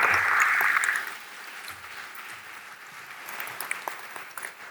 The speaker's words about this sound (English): A round of applause, please, for those two gentlemen.